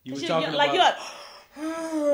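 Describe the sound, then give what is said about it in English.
Someone lets out a long, drawn-out yawn, a voiced, breathy stretch that rises and fades, followed by a short, steady vocal tone as it trails off. “Right before I yawned, which is a natural reaction.”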